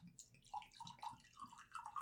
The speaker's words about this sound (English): All right, and for Final Fantasy fans, we're drinking out of cups with Moogles on them right now. So, let me just pour a little sip taste for both of us here.